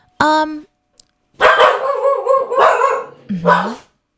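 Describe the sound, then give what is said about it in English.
Dogs bark loudly: one sharp bark, a brief pause, then a longer run of overlapping, drawn-out barks and yowls lasting a couple of seconds. “Those are my dogs.”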